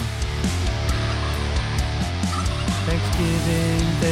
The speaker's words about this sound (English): Oh, that's a chicken. Oh, shit.